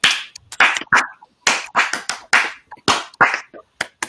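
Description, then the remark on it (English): Clapping with the backs of the hands: about a dozen sharp, fairly loud slaps in a quick, slightly uneven rhythm, with no talking underneath. “Was that a back clap? Yeah, basically.”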